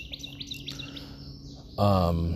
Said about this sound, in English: This bird is annoying as hell. God, I hate nature. I don't. I love nature, but this bird is annoying.